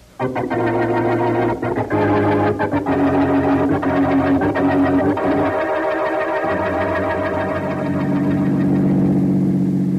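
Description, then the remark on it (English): A car engine drones steadily throughout, fairly loud, its pitch dipping and rising slightly as the car is driven fast toward the waterfront, with no voices. “Don't drive so fast”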